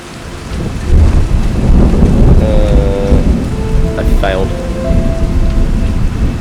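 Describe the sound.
A thunderstorm with heavy rain and hail pouring steadily and deep thunder rumbling through the low end. A couple of brief spoken words cut in over the storm.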